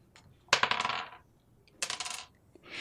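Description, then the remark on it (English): Two bursts of hard plastic dice, a 12-sided and a 4-sided die, clattering and tumbling across a tabletop, each a quick rattling cascade of clicks that settles, landing on 3 and 1, with a third roll starting at the end. No voices. “3 on the 12-sided dice and 1 on the 4-sided dice.”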